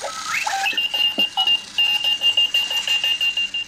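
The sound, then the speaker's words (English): A chrome, aluminum-shelled Clocky rolling robot alarm clock goes off, opening with warbling electronic chirps and whistles, then settling into a rapid, steady run of high beeps over a sustained tone. No one speaks. “And to turn off the alarm, you have to tap on either the key that turns off the sound or the one that turns off the wheels and the motor.”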